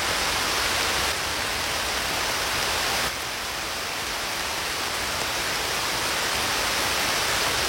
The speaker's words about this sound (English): How come raining so loud outside the window?